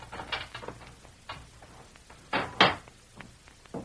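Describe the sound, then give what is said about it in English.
A metal stove door creaks and clanks open, followed by rustling and a couple of sharp scraping thuds as paper letters are tossed into the stove, with no talking. “The letters we wrote each other before I came here. I'll throw them in the stove.”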